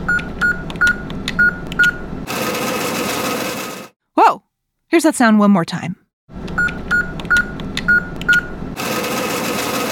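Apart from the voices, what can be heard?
ATM cash machine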